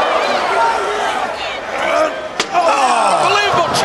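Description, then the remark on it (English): A steel chair cracks against a wrestler's head in one sharp, loud impact, denting the chair and leaving blood on it, cutting through a roaring, screaming arena crowd that keeps up steady noise before and after the hit. “Look at the dent in that chair. In the cranium, my God. And there's blood all over that chair.”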